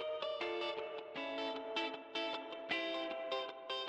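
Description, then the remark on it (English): Electric guitar with a springy, wet Fender-style spring reverb plays a rhythmic run of bright, sustained beach-rock chord stabs, steady in volume, with no voices. “This isn't really a … guitar part, but a little bit of the tone, that kind of like Fender reverb. Springy.”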